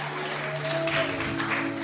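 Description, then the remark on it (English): An audience claps on Father's Day for the speaker's father, a steady, hissy wash of many hands at moderate loudness, with a faint constant hum underneath and no voices. “I thought you'd clap for my father.”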